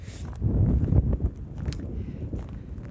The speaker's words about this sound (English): Boy, it's windy.